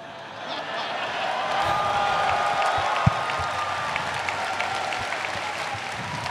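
Steady applause from an audience, a dense wash of many hands clapping at an even level for several seconds, with a faint murmur of voices underneath and one sharper thump midway.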